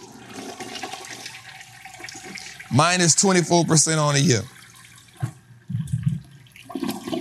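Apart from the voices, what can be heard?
toilet flushing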